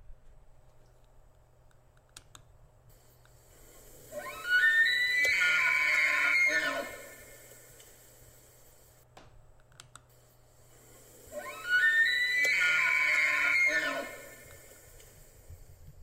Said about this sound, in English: So here is the sound of an elk bugle. And you can imagine the two of those kind of combined together as to what this thing really would sound like. So here's an elk bugle.